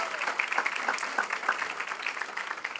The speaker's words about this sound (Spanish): Y yo creo que eso se merece un fuerte aplauso para nuestro Dios.